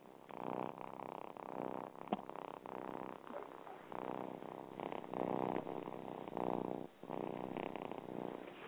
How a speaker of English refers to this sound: is now my little buddy that sits by the laptop when I'm on this show and literally purrs his little head off. And just have a little listen to this. He's getting quite famous, is this little one.